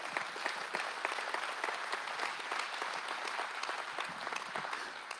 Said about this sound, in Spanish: Dan un aplauso al Señor.